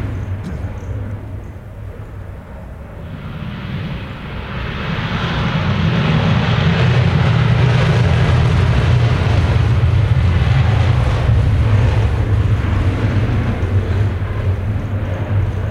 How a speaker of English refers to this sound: So what was that? So they were all F-35s. So there's four F-35s. So that's a very significant noise. Yeah, so it's the biggest engine ever put in a fighter. And so it's rated to about 42,000 pounds of thrust in full afterburner